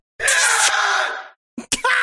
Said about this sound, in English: The fucking muffled scream. It's like someone literally getting killed.